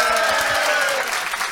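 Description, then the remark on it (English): An audience breaks into a round of applause for a panel, a dense, steady wash of many hands clapping at once, loud and continuous throughout with no voices standing out. “So, ladies and gentlemen, would you please give a round of applause to your panel?”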